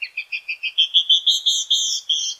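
A female canyon wren sings a clear run of about a dozen bright whistled notes, quick and clipped at first, then longer and slurred, with no voices.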